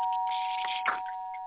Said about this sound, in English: I love doorbells.